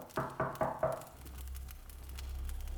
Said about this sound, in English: Why is someone knocking on my door at this hour? They better have a good reason.